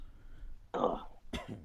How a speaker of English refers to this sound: All right. I'm gonna get all my coughing out as well. There it is.